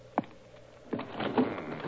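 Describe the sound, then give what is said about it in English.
A window in a card room being shut: a sharp wooden knock, then another thump followed by a rough, scraping slide and a few rattling clicks as the frame settles. No one speaks. “I see the window still open. The housekeeper left it that way, I presume?”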